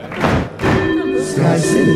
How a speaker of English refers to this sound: So, bloodthirsty crowd, if you want to spare him for 1 week, bang your knife and fork on the table once. If you want to not spare him and eat right now, bang your knife and fork on the table twice.